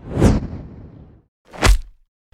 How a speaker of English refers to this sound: We'll be back in a whoosh punch.